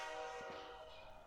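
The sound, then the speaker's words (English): A train horn sound effect blares with steady, sustained harmonic tones, a loud blast that holds for over a second over faint rumbling, with no voices. “I think that's the hype train.”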